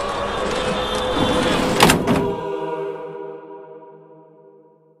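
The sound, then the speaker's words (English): A heavy door slams shut with a sharp double bang over a rumbling background, followed by a lingering metallic ring that slowly fades into quiet. “The door slammed behind us.”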